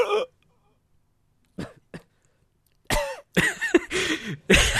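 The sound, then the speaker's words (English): A person imitates the dying cough of the Star Wars character Snoke: one rasping burst, two quick clipped coughs after a pause, then a loud, strained run of hacking, gurgling coughs. “Is that your impression of the noise Snoke made before he died? No, the noise he made was...”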